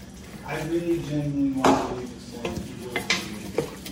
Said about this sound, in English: Next, we're going to strain the macaroni, then put it back into the pot. Now we're going to pour the tomato mixture into the pasta.